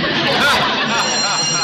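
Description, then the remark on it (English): A school bell rings in one continuous, loud, metallic clatter for the start of a class, sustained throughout while a crowd of voices chatters underneath. “Oh, there's the bell, Mr.”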